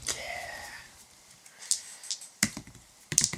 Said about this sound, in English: So I rolled one of my dice into the direct center. Yeah, so I rolled another danger roll, but in the first scene, there is no danger, so it's okay.